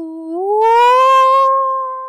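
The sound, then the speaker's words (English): A voice imitates an owl-like hoot that bends upward in pitch into a long, sustained howl, one loud continuous call lasting about two seconds before fading. “So can you just picture an owl hoot turning into a howl?”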